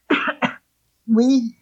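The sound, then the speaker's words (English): Two quick coughs in a row, then a short pause and a voiced throat clearing, all fairly loud with no speech around them. “We humans, excuse me, I've got a cough.”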